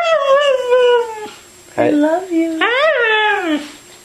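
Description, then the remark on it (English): A dog howls in three drawn-out, rising and falling phrases with a speech-like cadence, fairly loud, sounding almost like a sung 'I love you'. “this time of dog owners treating their now famous dog Mishka with over 100 million YouTube views like a human”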